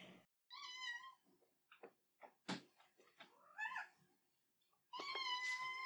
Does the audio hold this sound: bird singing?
no